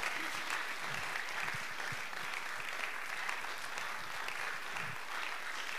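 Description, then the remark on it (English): An audience claps their hands in a dense, steady burst of applause, many overlapping claps blending into a continuous crackling wash at an even, fairly loud level with no voices standing out. “Clap your hands so you can say that.”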